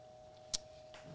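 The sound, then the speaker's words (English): An old refrigerator hums steadily and faintly in the background, a constant unchanging drone, with a single sharp click breaking in briefly partway through. “That noise you hear in the back of these episodes is it's a fridge and it's an old fridge, and so if you turn it off, it melts.”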